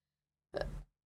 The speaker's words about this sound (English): I'm going to cough.